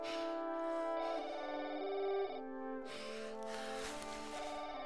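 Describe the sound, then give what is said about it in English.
A phone rings with a sustained electronic, melodic ringtone, shifting pitch a couple of times and growing brighter and noisier toward the end. It is fairly loud, with no talking over it. “That's your phone.”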